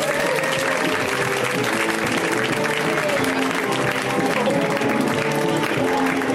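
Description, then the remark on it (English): A crowd applauds steadily for John Early as he is introduced on stage, dense clapping holding at a loud, even level throughout, with some cheering and murmured voices mixed into the wash of hands. “A round of applause for John Early, everybody.”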